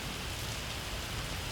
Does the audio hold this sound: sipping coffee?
no